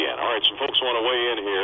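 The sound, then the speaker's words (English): A caller's radio plays the broadcast back down a phone line, so a thin, tinny, band-limited voice echoes the show steadily and continuously for the whole stretch. “You have to turn your radio down, I think.”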